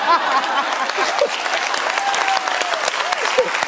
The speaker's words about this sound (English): And look at all the guys over there clapping. Look at all of them. Look at the cameraman. He never claps.